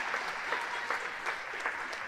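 An audience applauds children coming up to perform, a steady, dense wash of many hands clapping at a fairly even level, with sharper individual claps popping out now and then throughout.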